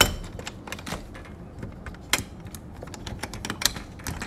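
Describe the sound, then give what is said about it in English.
Someone struggles with a door, producing a steady run of irregular, sharp clicks and rattles from the handle and latch, with a couple of louder clunks. No one speaks. “Trying to open this door.”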